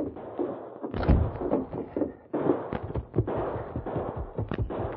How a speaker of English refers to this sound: Hey, listen. What's that? Sounds like... Gunfire. It was over on Main Street.